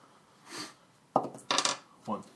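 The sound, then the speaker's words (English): Dice clatter and tumble across a tabletop in a few quick bursts, one sharp rattling run in the middle, with a faint murmur of talk around them. “I know, the dice hate me.”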